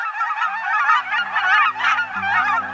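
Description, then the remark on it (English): A dense flock of small cackling geese calls continuously, with rapid, high-pitched overlapping cackles and yelps filling the air, while a low musical drone plays softly underneath. “Look and listen for pint-sized cackling geese this fall at refuges, in farm fields, and at other spots where migratory geese gather.”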